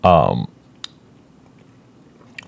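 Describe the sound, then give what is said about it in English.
A pet eating, heard as a few quiet, sharp crunching clicks spaced apart over a low background hum, after a short burst of voice at the start. “he's just eating some more right now. Making some noise.”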